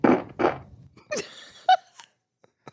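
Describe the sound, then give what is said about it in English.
Two quick, loud, raspy fart bursts right at the start, then a few shorter squeaky sputters trailing off into near silence. No one is talking. “Fart B was like my weakest one.”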